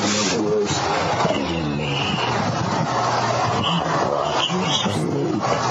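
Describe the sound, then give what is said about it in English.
A deep, raspy, death-metal-like growl on an EVP recording rumbles steadily for several seconds, harsh and loud, blended into a dense wash of hissy background noise with a few faint higher-pitched chirps. “Like, that whole part's creepy, and then when you hear the fucking death metal growl at the end.”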